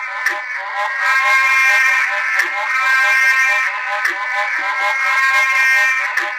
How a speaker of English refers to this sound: And then there's Platyplectrum ornatum that's doing that kind of short nasal unk, unk, unk. They're super cute as well. The males just lay spread-eagled in the water calling. They're really cute.